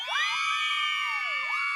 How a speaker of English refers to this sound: You get ladies screaming.